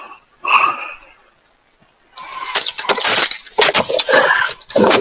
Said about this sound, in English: We can hear him. We can hear him breathing, like my breathing.